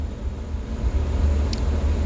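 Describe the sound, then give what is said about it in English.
A steady, low engine rumble of a car rolling slowly past, deep and continuous for a couple of seconds, with a brief faint click partway through and no voices. “And I don't know why people always drive by my truck real slow.”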